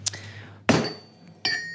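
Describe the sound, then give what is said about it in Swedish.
Three sharp, ringing strikes of a pestle against a hard mortar as ingredients such as basil, garlic, almonds and pecorino cheese are pounded, spaced unevenly about three-quarters of a second apart, each leaving a bright clinking resonance that fades over a low steady hum. “Och lägger ner grejerna i morteln och börjar stöter ihop det.”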